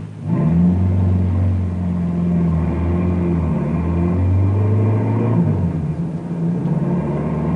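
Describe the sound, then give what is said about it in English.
A car engine drones steadily as the car is driven half a mile down a road, turns around and heads back toward a barricade, its low hum rising and dipping slightly in pitch, with no one talking. “Harry drives the car a half mile down the road, turns around, and starts back toward the barricade.”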